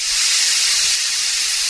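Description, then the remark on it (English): A steady, loud hiss of steam being released from a pressure cooker cooking lentils and vegetables, continuous with no pauses for the whole stretch, with no voices. “Yes, we're just releasing the steam from the pressure cooker so that we can open it”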